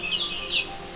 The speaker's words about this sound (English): This is the song of a male chestnut-sided warbler. He's only been on territory for a few days.